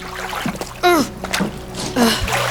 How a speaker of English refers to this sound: I didn't mean to throw water on you.